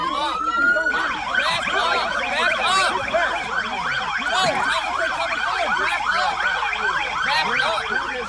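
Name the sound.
sirens wailing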